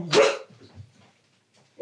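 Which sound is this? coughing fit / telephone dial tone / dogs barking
dogs barking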